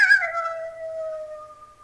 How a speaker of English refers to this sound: And at one point, we just heard the creepiest, strangest sounds, like, almost sounded like you've heard coyotes howling before, right? Oh, yeah. Well, when it first started up, we thought it was coyotes howling.